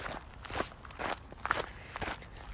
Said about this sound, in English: All right, how do the footsteps sound?